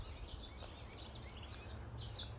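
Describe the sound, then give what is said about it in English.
Faint birds chirp and tweet in short scattered bursts against a steady low outdoor rumble, with no one speaking. “A lot of birds are showing up.”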